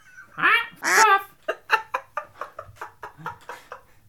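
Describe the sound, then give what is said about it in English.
A parrot squawks twice, loud and harsh, then breaks into a quick, steady run of about a dozen shorter squawking calls, with no talking. “I have a parrot as our special guest today is.”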